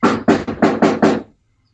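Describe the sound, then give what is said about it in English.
A rapid series of about six loud knocks on a house door in quick, even succession as someone knocks, then silence. “Someone's knocking on my door.”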